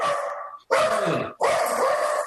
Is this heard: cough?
no